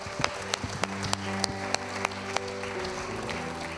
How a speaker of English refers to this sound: Come on, give him a hand clap of praise in this house today.